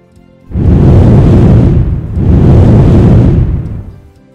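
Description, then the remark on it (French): Two long, roaring gusts of blown air, like a mighty huff and puff, each swelling loud with a deep rumble and fading out, as the wolf blows down the straw house; no voices. “» Le loup a soufflé si fort qu'il a détruit la maison en paille.”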